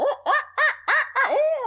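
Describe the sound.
A voice imitates an owl, giving four short, evenly spaced hoots followed by one longer, drawn-out hoot. It is clear, with nothing else in the background.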